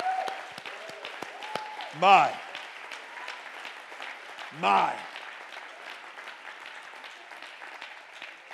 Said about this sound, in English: One more time, let's clap our hands and then you may be seated. Woo!